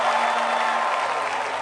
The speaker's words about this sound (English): Put your hands together and give the Lord a clap of it.